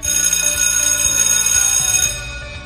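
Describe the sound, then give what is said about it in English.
A loud school bell rings at 1:30 to mark the end of school, a continuous metallic clang for about two seconds, then cuts off and leaves a brief fading ring. No voices are heard. “School ends at 1:30, so the bell should ring in 3, 2, 1.”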